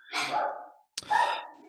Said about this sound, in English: That fucking dog again, bro.